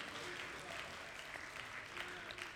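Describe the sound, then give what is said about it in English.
A large indoor crowd applauds steadily, dense overlapping claps forming a continuous wash of sound with no pauses, fairly loud. “We look at that, we clap over that, don't we?”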